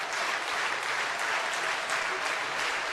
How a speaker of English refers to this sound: Two gone in the ninth inning. Crowd getting into it. It's all up to Vinny Guglietti to tie the game.